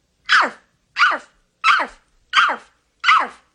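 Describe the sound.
A woman's voice imitates a big dog barking on command: five loud, evenly spaced woofs, with short silences between them and no other sounds.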